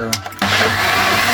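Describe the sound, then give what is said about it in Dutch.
A blender kicks on abruptly after a brief quiet moment and keeps running with a loud, steady whirring grind, mixing a piña colada in a café while it snows outside. “Ja, nou vanuit café De Flamingo, de blender.”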